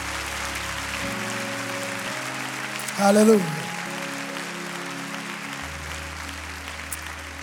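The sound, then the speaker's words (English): An audience claps hands in praise to God, a steady, dense, continuous patter, with a single voice briefly calling out over the applause partway through. “Clap your hands and give praise to God.”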